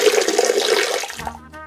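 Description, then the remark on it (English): A horse urinates: a loud, steady splashing gush of liquid pouring onto a surface for over a second, then trailing off into a few low trickles and drips. No one speaks. “You would think it was a horse pissing, but in fact, it is a horse pissing.”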